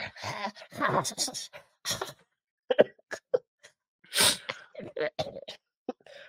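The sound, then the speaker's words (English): A voice imitates a raspy, gurgling throat cough in a string of short, rough bursts separated by brief pauses, fairly loud, with a strong burst near the middle. “The coughing works.”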